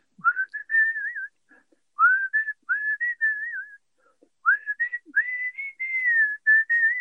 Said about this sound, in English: Can you give us a quick blast of the whistle now?